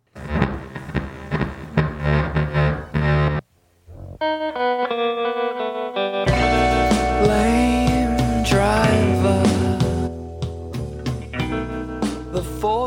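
An indie rock song plays with fuzzy, effects-heavy guitars; after a brief drop-out, sparse ringing notes lead back into a loud, dense full-band passage with a wavering vocal line.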